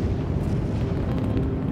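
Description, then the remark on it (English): A deep, thundering roar of the Freedom 7 rocket's engines igniting for launch as journalists and public watch, heavy in the low end and holding steady and loud for the whole stretch, with a crackling rumble on top and no voices. “The engines ignite with a spectacular boom.”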